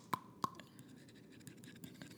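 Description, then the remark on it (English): Teeth grinding: two sharp clicks with a brief high ring, then a faint, uneven scratchy crunching that fades in and out. It is quiet throughout, and no one speaks. “Or you just grind your teeth. Teeth make sounds.”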